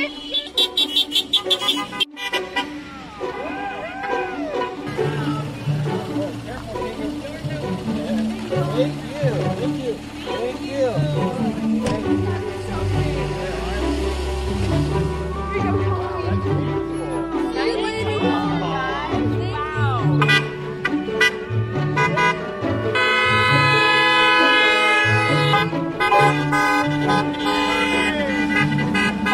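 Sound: car horns honking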